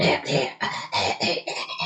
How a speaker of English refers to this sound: And then he starts petting her hair. And then she coughs.